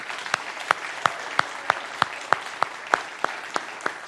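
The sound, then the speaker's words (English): An audience applauds the Lord, with sharp, evenly spaced claps striking in a steady rhythm about three times a second over a continuous wash of crowd clapping. No one speaks. “Let's give Him a round of applause, huh?”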